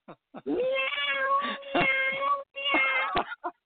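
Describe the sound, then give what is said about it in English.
A person's voice imitates a cat, giving a few drawn-out, wavering meows in quick succession, fairly loud, with short breaths and clicks between them. “Can the cat at least say meow?”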